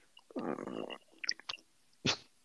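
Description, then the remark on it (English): A person cracks their bones: a crunchy, grinding stretch followed by a few sharp pops and clicks, then one last louder crack after a short pause, with no talking. “Stop cracking your bones.”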